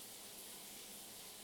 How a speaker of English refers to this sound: So you're gonna hear some shower water for a bit.